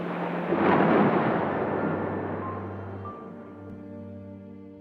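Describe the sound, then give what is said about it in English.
A deep roll of thunder swells within the first second, then slowly rumbles away over several seconds beneath a low, steady drone. No one speaks. “they saw the clouds had gotten even darker, and there was a terrifying storm forming on the horizon.”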